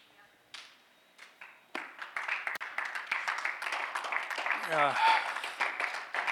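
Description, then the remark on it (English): An audience claps, starting with a few scattered claps and swelling into steady, dense applause, with a voice letting out a rising whoop partway through. The clapping follows a Bible reading, applauding the word of God. “Now, there should be something a lot more for that one, because bring it up.”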